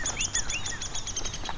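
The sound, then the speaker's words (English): Rapid, high-pitched squeaky calls of two downy woodpeckers, one in front of and one behind the recordist, repeat in a quick series, joined by short downward-sliding calls over faint outdoor background noise. “These short little squeaks are downy woodpecker.”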